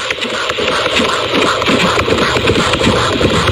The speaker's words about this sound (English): So the heartbeat's a little fast here because the doctor accidentally hit the baby in the head. Oh, okay. I was going to say that sounds fast.